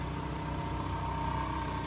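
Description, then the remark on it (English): A lawnmower going by drones steadily, a low buzzing engine rumble with a constant pitch and even loudness that neither rises nor fades over the two seconds. No one speaks over it. “Perfect timing for a lawnmower to go by.”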